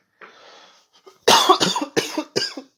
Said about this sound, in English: And I don't know why I'm coughing so much. Maybe because flu season, I don't know,